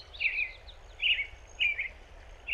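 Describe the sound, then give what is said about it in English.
An American robin sings short, clear warbled phrases repeated at a steady pace, about four phrases in a few seconds, over a low background rumble. “When people talk about someone being an early bird, I'm pretty sure they're referring to the American robin. Their song can be monotonous, but I kind of like how eager they are.”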